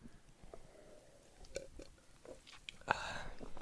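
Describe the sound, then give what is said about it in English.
Someone takes a sip of Pilsner beer from a can: quiet wet mouth clicks, a couple of short slurping bursts and a swallow, with no talking. “Let's get a sip before we tell you what the can has to say about it.”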